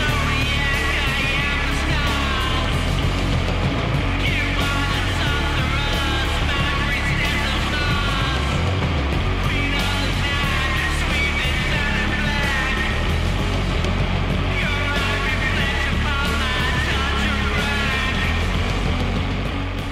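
A band's song plays loudly and continuously, a thick, dense wall of distorted, droning sound with heavy low end and no spoken voices.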